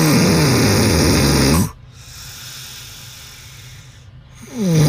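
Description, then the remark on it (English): A man snores loudly in his sleep: a long, rattling, buzzy inhale, then a quiet pause before the next harsh snore starts to build. “Let's find the Queen City's loudest snorer.”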